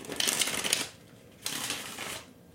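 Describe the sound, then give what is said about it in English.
Tarot cards being shuffled in two quick bursts of crisp, rapid riffling, fairly loud, separated by a brief pause, with no one speaking. “So I'm going to go ahead and shuffle.”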